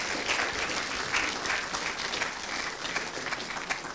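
Steady applause from a church audience welcoming a guest speaker on a Sunday, a dense, continuous clatter of many hands clapping at an even loudness for several seconds, with no voices standing out.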